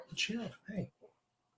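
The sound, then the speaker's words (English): Two quick barks from a 4-month-old puppy with a high, yappy edge, followed by a softer third yip, then quiet. No one talks over them. “Sorry, 4-month-old puppy's trying to freak out.”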